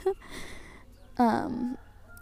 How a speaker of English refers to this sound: You can hear the chickens. Not the chickens. I think it's roosters. Yeah, the roosters making noise in the background.